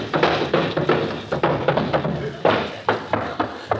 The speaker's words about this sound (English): In the modest home of the great Gildersleeve, there occurs a phenomenon peculiar to male youth. It is marked by the gentle pattering of feet.